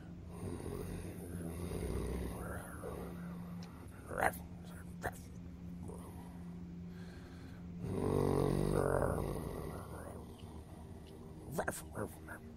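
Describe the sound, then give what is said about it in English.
A voice imitates a low, faint growl: a rough, rumbling drone that swells louder for a moment partway through, with a few small clicks and breathy snorts, no words spoken. “Sounds like growling.”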